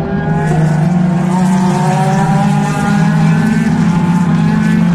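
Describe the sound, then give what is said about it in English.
Porsche 911 race cars roar past at the Le Mans race in a continuous, loud, high-pitched buzzing drone, several engines layered together with slowly shifting pitch and no pause over five seconds. “And here come the Porsches, the 911s. They sound like an angry team of wasps.”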